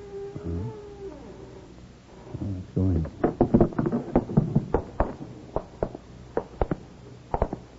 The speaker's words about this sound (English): Hey, it feels like a catch. Yeah. Door's open